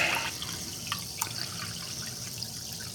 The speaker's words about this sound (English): All right. So we poured 6 ounces out of the Topo Chico bottle.